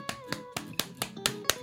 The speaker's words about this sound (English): You guys have to clap. I understand that fucking clapping could be difficult if you're wearing multiple rings, especially if no one knows how many rings you're wearing.